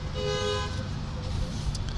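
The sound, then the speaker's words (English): A car horn gives one steady, bright honk lasting about half a second, then cuts off, leaving a low, busy background rumble. “that's your car.”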